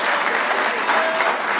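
A crowd in Morrisville, New York applauds, a dense, steady wash of many hands clapping at once, sustained and fairly loud throughout with no voices standing out.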